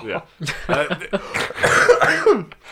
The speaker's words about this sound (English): Are you okay, mate? Yeah, I'm just trying to not cough.